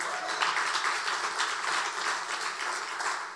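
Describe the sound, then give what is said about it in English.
A church audience claps their hands in a dense, steady wash of applause that holds evenly throughout, with no voices on top. “Can you just, anyone, like if you guys have been here at all for this series, can you just clap your hands?”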